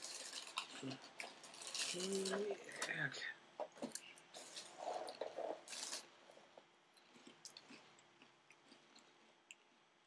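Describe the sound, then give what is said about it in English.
Crunching and chewing of Cheez-It cheese crackers, with irregular bursts of crisp crackles that fade into softer chewing, plus a brief murmured vocal sound early on. “More Cheez-Its? I do.”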